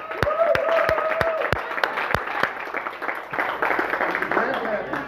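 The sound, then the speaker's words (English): An audience at a Father's Day pancake breakfast applauds the fathers standing up, with sharp, distinct claps standing out over a steady wash of crowd noise and a few cheering voices, the clapping thinning slightly toward the end. “Let's give all the dads a round of applause.”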